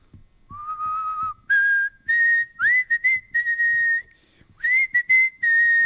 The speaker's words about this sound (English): I'll whistle it and sing, and you see if you recognize it. Ready?